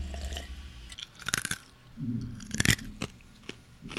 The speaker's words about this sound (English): What is that? Ice. That was so crunchy.